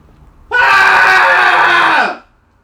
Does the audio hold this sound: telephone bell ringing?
no